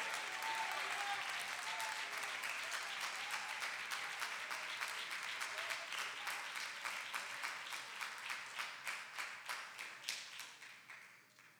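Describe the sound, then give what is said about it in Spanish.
An audience at a worship service applauds the Lord steadily, dense clapping at first that thins into distinct individual claps toward the end as it fades out. No voices stand out over it. “Denle fuerte aplauso al Señor con todo el corazón.”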